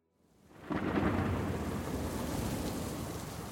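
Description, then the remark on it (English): Steady rain pours down at night in Harare, Zimbabwe, while a deep, rolling rumble of thunder swells in and sustains loudly throughout, with lightning, filling the scene with a dense storm wash and no voices. “So now it's nighttime. Rain is starting to fall. There's lightning starting, right?”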